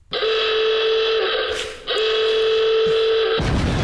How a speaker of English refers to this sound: We've got a timer. Don't know how long's on it or when it runs out. And if you haven't stopped and the timer goes off, you lose everything. Everything. And you'll know how the time is up when you hear this.